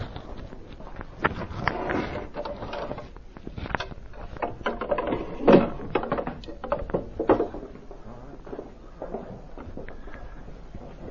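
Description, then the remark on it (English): Wooden chairs scrape, knock and clatter as they're shifted and set down one after another, a busy irregular run of bumps and creaks, with no talking. “We can get more chairs around here, I'm sure.”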